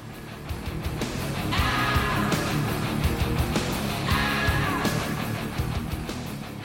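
Heavy distorted electric guitar drives a loud rock song while a singer lets out two long, strained screams that ride right on top of the riff.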